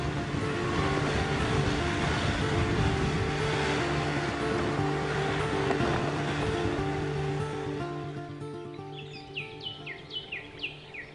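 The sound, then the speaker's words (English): An SUV's engine drones loudly and steadily, struggling up a hill on a mountain road, under heavy rumbling road noise, then fades away toward the end, leaving a few clear bird chirps in the quiet. “Now we just have two trucks and another SUV. And ours is struggling pretty bad right now.”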